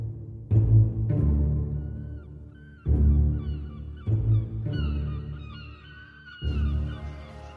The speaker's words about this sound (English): By all means, let them enjoy the show, though, as the seagulls attack clueless passers-by.